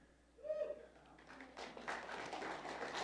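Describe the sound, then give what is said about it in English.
A short voiced sound, then a crowd breaks into clapping: many hands at once, dense and steady, moderately loud, continuing to the end without a clear beat. “You hear all those people clapping for you?”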